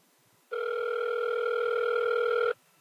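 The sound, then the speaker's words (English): A single ring tone on a telephone line: one steady, buzzy electronic tone lasting about two seconds, clear, then cutting off abruptly into quiet, with no voices. “It's ringing.”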